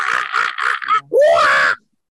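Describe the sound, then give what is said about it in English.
A voice imitates a monkey, as the response of another specimen in the room when asked who it is: four quick, harsh chattering bursts followed by a drawn-out, rising hoot with strong harmonics, loud and alone, ending abruptly. “It seems to respond, but just comes up with this monkey sound.”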